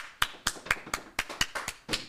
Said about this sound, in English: I just want to say happy 3-year anniversary to the You Should Know podcast. Round of applause for 3 years of You Should Know.